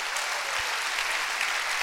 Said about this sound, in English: Come on, clap your hands.